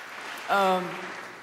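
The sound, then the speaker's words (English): Congregation applause at Rolling Hills church for the family pastor's 10-year anniversary fills the whole moment, a steady dense patter of many hands clapping, with a brief voiced call or cheer rising over it partway through before the clapping carries on. “And so that's why I did it, so y'all would clap for me.”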